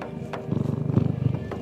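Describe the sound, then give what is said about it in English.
A male cat purrs steadily, a low rumbling throb with a quick regular pulse that swells slightly in the middle, with no voices present. “Oh, sorry, can you hear him purring?”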